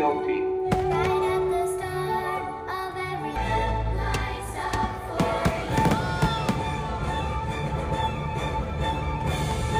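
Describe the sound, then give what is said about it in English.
Fireworks go off outdoors at a park, near its front and gift shop, in a rapid, continuous barrage of booms and crackling bursts, loud, with steady background music running underneath. “It has been a hot minute since we've seen fireworks, and I will tell you there were multiple times when I like jumped back and grabbed”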